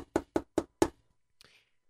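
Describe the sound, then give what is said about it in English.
Four firm, evenly spaced knocks on the big wooden door of a shul (synagogue), deep and resonant, followed by a brief faint click and shuffle before silence. “And suddenly, there was a knock on the big shul door.”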